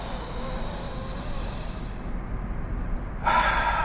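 A deep, airy breath drawn in slowly and let out again, fairly loud, with the exhale ending in a sharper, rushing burst. No one speaks.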